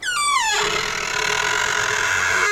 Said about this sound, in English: The house door swings open.